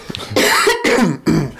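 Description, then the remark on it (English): Three harsh, rasping coughs in quick succession, loud, with brief pauses between them and no talking. “I'm fucking still coughing, sir.”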